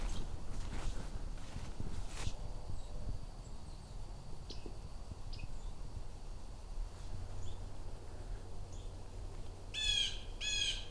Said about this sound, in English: Blue jays? So I have more than a few sparrows and warblers, other birds like blue jays and flickers here. This is a pretty typical fall migration flock. Not very loud.